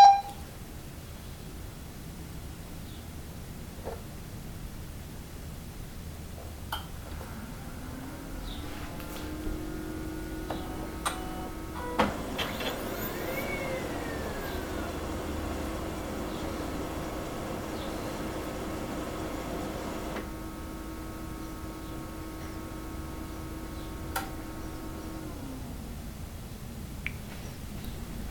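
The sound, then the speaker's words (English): A 3D printer runs, its motors humming and whining in steady, shifting tones, with a brief louder whirring stretch midway and a few small clicks. No one speaks. “This is... this is what the printer sounds like.”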